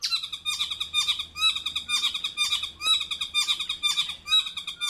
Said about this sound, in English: the interesting thing about that Motuora call is that that's what might be considered a fairly typical male saddleback call